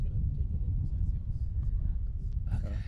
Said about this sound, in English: A car just pulled up behind us, and it's kind of creepy.